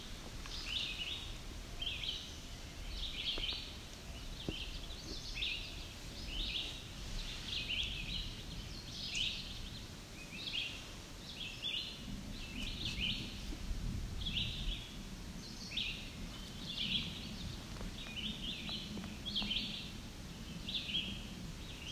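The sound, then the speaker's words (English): A warbler sings a steady series of short, high, bright phrases about once a second, clear over a low outdoor rumble, with no talking. “Their song can be fairly easily confused with a yellow warbler.”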